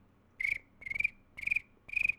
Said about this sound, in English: crickets. Nothing. No one's talking.